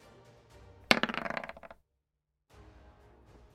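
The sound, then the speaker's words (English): Dice clatter onto a hard tabletop during a game, a sharp first impact followed by a quick run of bouncing clicks that settle within about a second, clear against a quiet background. “Yeah, you called it before the dice rolled.”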